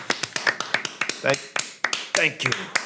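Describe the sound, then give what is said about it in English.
One person's loud, sharp hand claps ring out in a quick, slightly uneven series of around a dozen or more, while people talk over them. “Oh, are you doing your loud clap again that everyone hates?”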